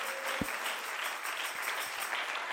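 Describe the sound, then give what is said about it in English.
A crowd claps their hands to the Lord, a dense wash of many hands applauding together at a fairly loud, even level with no talking. “Come on, clap your hands to the Lord right now.”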